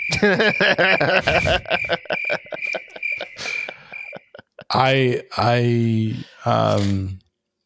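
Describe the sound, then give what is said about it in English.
Crickets chirp in a steady, rapid high-pitched pulse for about four seconds, loud, then fall silent as a man begins speaking. “Insert crickets here.”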